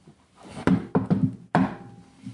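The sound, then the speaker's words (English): A prearranged patterned knock on a wooden door: a few hollow, solid raps with uneven spacing, a pause, then another firm knock and a softer trailing one. No one speaks. “And you know our knock, right?”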